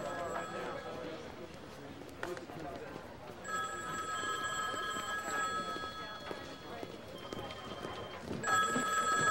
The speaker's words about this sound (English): Just thought that you ought to answer your phone. 47 out. I was wondering if we should get that.